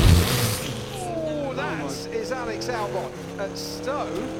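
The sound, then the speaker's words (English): A racing car engine, driven by Albon at Stowe, roars with steady, buzzing harmonics, its pitch climbing and dipping through quick gear changes, loud throughout, with faint voices underneath. “Yeah, it does sound like a it's a racing car, obviously, but yeah, that's...”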